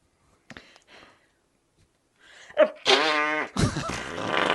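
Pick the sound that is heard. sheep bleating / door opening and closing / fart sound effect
fart sound effect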